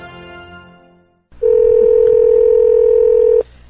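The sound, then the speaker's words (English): A single steady telephone tone sounds loud for about two seconds, then cuts off abruptly. A fading, ringing tone comes just before it, and no one speaks. “Next time I have to remember to locate the redial button before, like, pressing the call button.”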